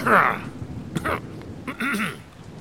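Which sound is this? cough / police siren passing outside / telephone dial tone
cough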